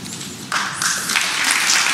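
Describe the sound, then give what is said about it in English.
Tepid applause: a thin, steady patter of clapping that swells slightly after the first half second and holds at a modest level, with no voices over it. “That's some tepid applause.”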